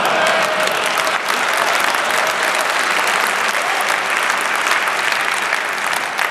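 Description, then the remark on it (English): An audience at a talk on the Perl programming language applauds steadily for about six seconds, a dense, even wash of clapping that stays loud throughout with no voices standing out. “A lot of Perl enthusiastic in the crowd.”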